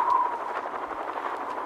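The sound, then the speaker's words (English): A steady, whooshing drone of approaching old helicopter rotor blades of the Enclave, with a faint rhythmic pulse, holding at a moderate, even loudness throughout, with no voices. “Why, that's the sound of old helicopter blades.”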